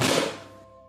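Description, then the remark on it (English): A baking sheet of cookies, baked for about 6 minutes, is slid back into an oven and rotated, with a single metallic clank, its bright ring fading away in under a second. “I'm just going to take the first sheet out and give it a light kind of tap on the surface here, and then put it back into the oven, rotating it around. And then doing the same with the other sheet.”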